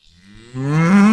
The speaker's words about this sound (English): He said, I look away and I hear the sound of mooing.